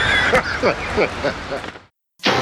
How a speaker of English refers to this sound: Turkeys are here. Thing with turkeys, they got no sense of direction.